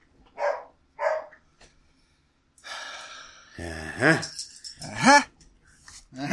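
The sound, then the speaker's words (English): A female dog gives two short, sharp barks, then after a brief pause lets out louder, drawn-out barks that rise and fall in pitch, sounding excited and insistent. “She's barking at nothing.”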